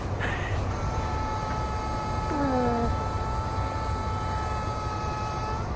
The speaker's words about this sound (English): Well, train's here.